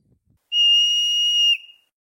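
A single loud, shrill groundhog whistle holds one steady high pitch for about a second, then dips briefly at the end and stops, with no voices around it.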